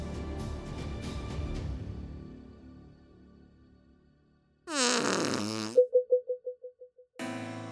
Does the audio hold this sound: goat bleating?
no